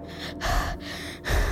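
gasp

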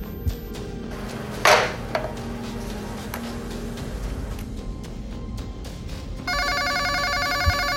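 telephone ringing

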